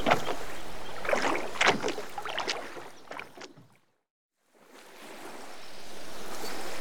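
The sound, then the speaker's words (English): A rowboat carrying Ratty and Mole is paddled up a river toward Toad Hall, with splashing oar strokes and gurgling ripples over steady wash, then a brief silence before a soft, continuous rush of water returns. “Step aboard, Mole, and we'll be off.”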